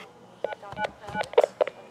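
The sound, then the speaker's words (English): Touch-tone keypad beeps from a desk phone in a hospital emergency room: about five short dual-tone presses at an uneven pace, fairly clear over a faint background hum, with no one speaking. “For ER assistance, dial 372 on the desk phone.”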